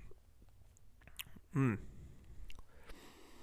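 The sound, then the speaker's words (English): Quiet mouth noises: soft clicks and a small slurping sip of a hoppy 88 IBU beer, then a short voiced swallow or murmur, with faint background noise around it. “Let's give it a sip because I can't look at this any longer without trying it.”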